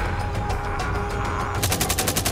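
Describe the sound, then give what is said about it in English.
Heavy gunfire aimed at Pat Tillman's team on a hillside as a besieged convoy emerges from a canyon, rattling in rapid, overlapping bursts, growing louder and denser toward the end into a sustained automatic volley over a low rumbling background. “But when the besieged convoy emerges from the canyon, Pat and his team come under heavy fire.”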